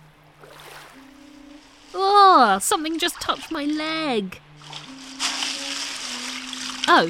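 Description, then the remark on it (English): Someone wades through knee-deep floodwater in flooded London, the water sloshing and swishing around their legs. It is steady, partly under a person's startled speech. “Ah, oh, my feet are wet. This water is going right up to my knees.”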